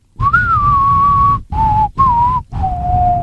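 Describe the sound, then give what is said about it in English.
Someone whistles a spaghetti Western movie theme melody: four long, clear, pure notes separated by brief pauses, the pitch gently falling across the phrases. No one speaks. “Its theme song has a whistle.”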